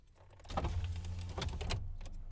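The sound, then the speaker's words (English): A car's power window whirs as it rolls down, a steady low motor hum with scraping, rattling tones along the glass, lasting a couple of seconds with no talking. “I thought about keeping the window down a little bit.”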